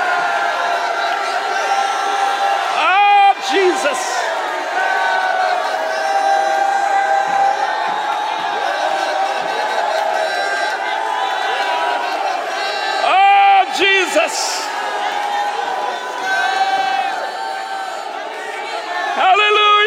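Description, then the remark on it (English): A church audience shouts and cheers continuously in praise, a loud, sustained roar of overlapping yells and whoops with a few sharper bursts standing out. “Would you shout unto him and receive that word?”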